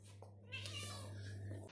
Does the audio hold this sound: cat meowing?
yes